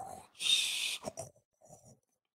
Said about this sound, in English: He sleeps snoring, roaring.